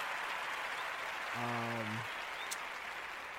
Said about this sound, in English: Give y'all a round of applause.